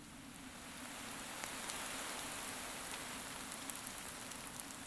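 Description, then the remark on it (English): Water is poured onto a campfire in one more dousing to put it out completely, with a steady, rushing hiss that swells within the first second, scattered faint crackles and sizzling pops running through it. No one speaks. “Better give it one more douse.”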